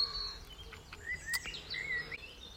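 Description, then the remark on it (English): Several small wild birds chirp and trill in overlapping bursts in trees and bushes, thin high notes rising and sliding, over a soft outdoor background hum with no talking. “I've seen goldfinches fighting in the bush, like 2 feet away from me.”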